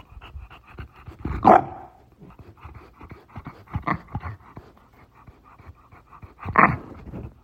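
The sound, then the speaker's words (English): A bulldog, Francis Quito, pants heavily and rhythmically, with quick repeated breaths, a couple of louder snorting huffs, and faint whimpery sounds mixed in. “So because this is so precedented, I just wanted to get the perspective of an actual dog. So joining us today is my Bulldog, Francis Quito.”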